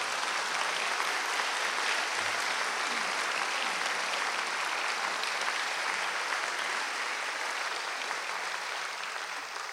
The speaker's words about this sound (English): And since this is Mother's Day weekend, I think we should extend a special round of applause to all the moms here today who can't believe their babies now have master's degrees.